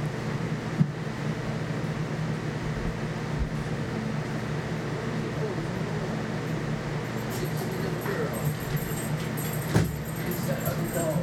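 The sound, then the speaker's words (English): A door bumps and clicks as a dog pushes through it, tags jingling faintly, with a sharp knock near the start and another near the end over a steady hum. “Is it just the heat that's making that door close? I don't know. Or is that your buddy?”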